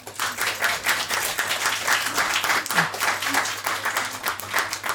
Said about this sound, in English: Well, our conference, sorry. The first annual Durham... Wait a minute. Just a round of applause, please. Thank you for... Thank you.